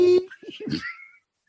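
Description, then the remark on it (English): A short, loud electronic beep, one steady mid-pitched tone lasting a fraction of a second, followed right away by a burst of voice. “Listen to beep.”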